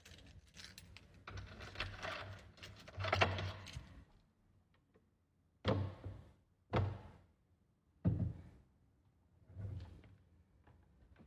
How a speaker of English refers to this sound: There's some knocking happening right now.